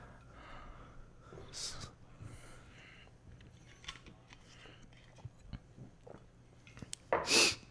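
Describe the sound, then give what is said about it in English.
A person imitates the labored, wheezing breathing of a dog on life support, with airy gasps and snorts repeating irregularly, building to a loud, harsh exhale at the end. “breathing on life support”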